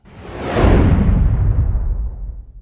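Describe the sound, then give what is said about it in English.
A loud, sweeping whoosh sound effect that builds quickly, then rumbles and fades out over a couple of seconds, with a deep low-end roar trailing off. No speech. “Well, I'll get into that answer right after this whoosh sound.”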